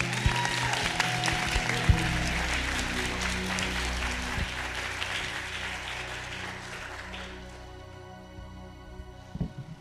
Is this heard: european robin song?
no